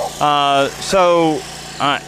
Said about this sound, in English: And that sound that we're hearing is a lawnmower. It's not the sound of a race car.